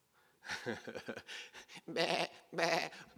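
A sheep bleats repeatedly: a few short, wavering cries, then two longer, louder quavering bleats, with no talking over them.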